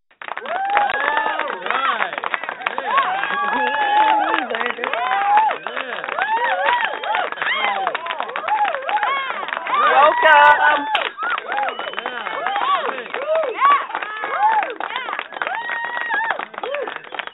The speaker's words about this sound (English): Yes, 19 seconds of clapping is a whole lot of clapping.